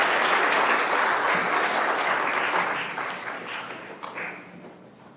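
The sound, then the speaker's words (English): A large crowd applauds steadily, a dense wash of many hands clapping that stays loud for a few seconds, then gradually thins and fades near the end. “Okay, and if your dad is special to you today, let's give him a round of applause again.”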